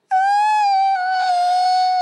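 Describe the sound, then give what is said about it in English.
A single loud, shrieky yell from one voice, held for about two seconds at a high, steady pitch that dips slightly partway through before cutting off abruptly. “It was the loudest shrieky yell thing I've ever done after that great call forward.”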